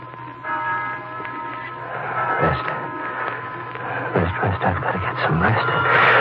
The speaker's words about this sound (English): Get those bells out of my mind. They're driving me crazy. Why don't they stop?